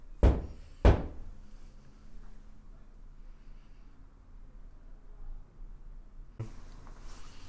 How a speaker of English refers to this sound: Sometimes we ask them to make a knocking noise, so we'll knock and ask them to repeat it. Yeah. So, can you make a noise like this?